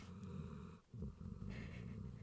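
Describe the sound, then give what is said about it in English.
A dog asleep next to the speaker snores, a low rumbling, fluttery drone with a brief pause between two long breaths, steady and fairly quiet with no talking. “So if there is a little bit of snoring in the background, she's asleep next to me.”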